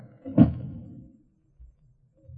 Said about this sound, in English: Maybe I'd better shut this door now. Yes. Yes, please do.